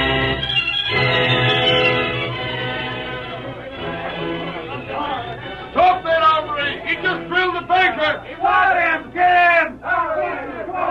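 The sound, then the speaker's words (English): A loud crowd shouting and yelling as it streams down the main street of Lobo City, many overlapping voices forming a steady roar, with individual cries rising out of it in bursts toward the end. “A shouting, yelling crowd streamed down the main street of Lobo City.”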